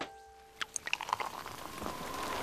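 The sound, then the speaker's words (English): Rain from an arriving storm starts falling over horse paddocks after months without rain, with wind whipping it: first a few scattered, distinct drops ticking, then thickening into a steady, rising patter that fills the background. No voices. “I could feel tiny drops of rain slicing into me as I stood undercover looking into Chick's paddock.”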